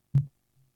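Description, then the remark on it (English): A phone bumps against a microphone with one dull thud, then a much fainter low knock a moment later. No one speaks. “I heard a thud. Yeah, I think that was you knocking your phone into the microphone.”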